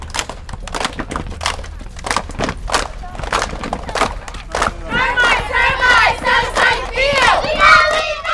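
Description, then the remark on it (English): The Glenville Panthers cheerleaders shout and cheer together, starting with sharp rhythmic claps and stomps, then rising into loud, high-pitched unison yells that grow more excited toward the end. “That's a lot to take in, so let's get to the cheering.”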